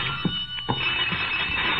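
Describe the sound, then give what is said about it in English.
A telephone in an apartment rings after 2 o'clock with a shrill, continuous high-pitched jangle that holds steady throughout, broken only by a couple of brief soft knocks underneath. “It was past 2 when I got back to my apartment and the phone was screaming for help.”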